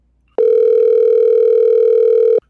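A telephone call rings once as someone is being called on the phone: a single steady electronic tone, loud and even, held for about two seconds before cutting off, with no voices around it.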